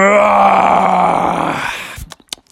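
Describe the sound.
A voice imitates a giant bear roar: one loud, drawn-out, rumbling growl lasting about two seconds that slowly fades, followed by a few short breathy bursts.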